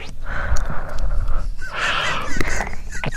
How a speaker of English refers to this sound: Is that breathing? I can't even listen to it with headphones on.